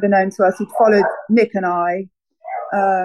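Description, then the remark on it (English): A dog makes a brief, high yelping sound while a man speaks, nearly buried under his steady talking. “Really sorry about the dog.”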